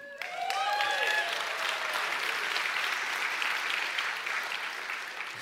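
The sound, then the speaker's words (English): A crowd at a Good Friday service applauds steadily for several seconds, the dense clapping staying loud and even before easing slightly at the end, with a few brief whoops or voices rising at the start. “Now you clap”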